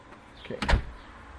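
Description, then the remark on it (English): A single door is shut and locked while getting ready to go for a walk: a short, solid thump and a brief rattle of the latch, followed by quiet background hum. No one speaks. “Let's lock the door.”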